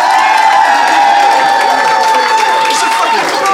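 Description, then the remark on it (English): A live audience in Phoenix erupts in loud, sustained cheering and clapping, voting by applause, with shouts and whoops rising over a dense wash of applause for several seconds. “So if you think Marcel and Ben, and therefore Mark, won the day, applaud now.”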